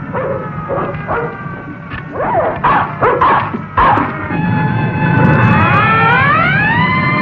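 A dog barks and yips in a quick, uneven string of loud bursts, then the sound shifts into a long, rising, wailing whine that carries on to the end.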